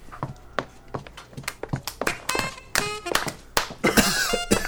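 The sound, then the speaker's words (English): Sparse, light applause from a small group, with irregular scattered claps and a few coughs breaking through, moderately quiet. “Yeah, let's give this a stage left and a light applause with a few coughs.”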